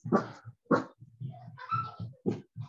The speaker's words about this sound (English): Oh my gosh, my dog's freaking out.